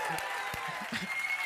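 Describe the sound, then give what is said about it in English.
An audience breaks into steady, dense clapping, many hands overlapping into a continuous wash of applause with a few murmured voices underneath, practicing getting excited just before the tithes and offerings are taken up. “And I want you guys to get excited. Some clapping.”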